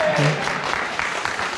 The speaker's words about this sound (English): Can I just say thank you for leading worship? It was wonderful. Can we have a round of applause for the worship team, please?